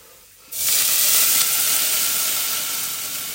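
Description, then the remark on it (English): Lemon juice and clam juice hit a hot pan with a sudden loud hiss at about half a second, settling into a steady bright sizzle that gently fades over the next few seconds. No one speaks. “So the clam juice is all in there now, and it's going to bubble away.”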